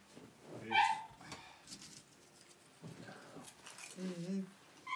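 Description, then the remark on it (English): A small dog lets out a short, high-pitched yelp or whine, followed later by a few softer whimpering sounds, with people talking quietly in the background. “Oh, little dog. She's hoping he's making herself known.”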